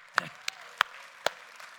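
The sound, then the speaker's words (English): A few scattered, sparse claps from an audience for the Cathedral Pit Crew, about four sharp hand claps spaced unevenly over a couple of seconds, fairly quiet with a soft background hiss and no voices. “Let's hear it for our Pit Crew.”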